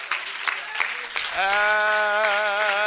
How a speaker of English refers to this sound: Come on, let's clap our hands to the Lord while our help's coming up here.